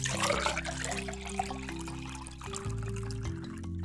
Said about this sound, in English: She pours water onto Grandma's hands.